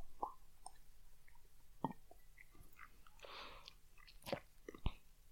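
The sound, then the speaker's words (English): Quiet mouth sounds of someone sipping expensive Scotch whisky: a soft slurping sip in the middle, surrounded by scattered lip smacks and wet clicks, with no talking. “Sip it like the song. Sip your Scotch.”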